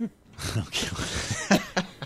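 Someone coughs several times in a rough, uneven series of sharp, throaty bursts, fairly loud, like a person sputtering after choking.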